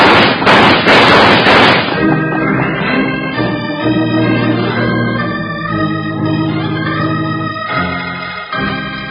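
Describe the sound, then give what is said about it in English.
In a Wild Bill Hickok western drama, a rapid, loud volley of gunshots crackles for about two seconds as characters shoot their way out in the dark. It then gives way to sustained orchestral music that carries on steadily to the end. “Shoot your way out.”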